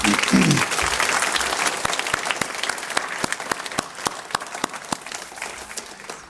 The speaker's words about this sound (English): Well, how about another round of applause